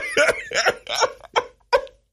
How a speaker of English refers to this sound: I'm sick, and so, like, sometimes I'll gag a little. If I, like, get a coughing spell and I really can't catch my breath, it might gag me, right?